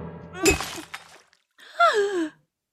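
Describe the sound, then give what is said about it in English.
A glass of water knocks over with a quick clatter and splash, followed a moment later by a startled, wavering vocal cry. “Do watch out for the glass of water.”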